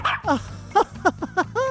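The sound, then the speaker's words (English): A quick run of about six short, high barks and yips from a dog named Rover, fairly loud, in an uneven rhythm over a low steady hum. “Now for pets, for cats, for dogs, for goldfish, and your electric eel. How are you feeling, Rover?”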